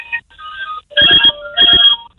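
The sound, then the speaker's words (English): A parrot mimics a landline telephone ringing: a few whistled tones, then two loud trilling ring bursts with a short gap between them, with no talking. “Just leave the phone, the landline, and leave it ring out and see what he's saying.”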